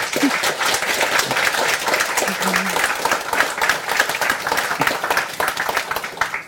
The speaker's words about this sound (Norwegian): Vi synes at vi skal ønske dem velkommen med en ordentlig varm applaus.